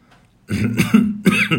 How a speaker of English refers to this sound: And excuse the cough.